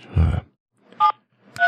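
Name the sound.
phone keypad dialing tones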